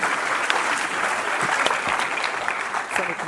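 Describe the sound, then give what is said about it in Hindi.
An audience at a university's session opening claps steadily to welcome film personality Aditya Seth and the vice-chancellor, a dense, continuous wash of many hands with even loudness from start to finish and no voices standing out. “सबसे पहले आदित्य जी का, कुलपति जी का जोरदार तालियों से आपका स्वागत करेंगे।”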